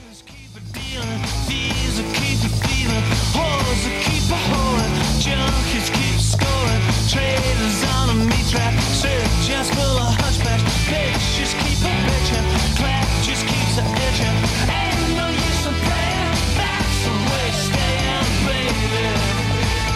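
A loud, full-band mid-1990s rock song by a Scottish band plays steadily throughout, with driving drums, thick guitars and bass filling the mix after a brief fade-in, and no talking over it.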